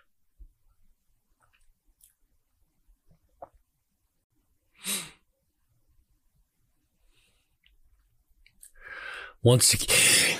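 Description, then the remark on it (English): During wrestling match commentary, after a mostly quiet stretch with a brief soft rustle, a breathy intake builds into one loud, explosive sneeze from the commentator at the very end. “Sorry for the sneeze there, Bruiser Nation.”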